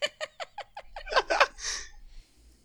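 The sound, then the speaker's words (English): A voice mimics snoring heard over a phone line: a quick run of short, rhythmic nasal snorts builds into rougher, raspy breaths, then trails off in a long hissing exhale. “And then you just start hearing this snoring on the other end of the line.”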